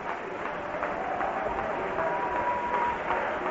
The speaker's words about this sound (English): Clap again for just a moment and worship the Lord. Hallelujah.